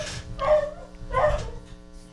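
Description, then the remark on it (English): A dog, Henry, lets out two sharp, fairly loud barks along with the doorbell, roughly three-quarters of a second apart, with a faint low hum underneath and no voices. “And Henry lets himself be known as well as the doorbell.”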